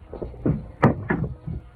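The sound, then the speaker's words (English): A short run of wooden bumps and scrapes, with one sharp knock in the middle, as a chair is knocked and clatters in a darkened living room. “Oh, that chair.”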